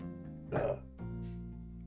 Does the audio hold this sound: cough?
yes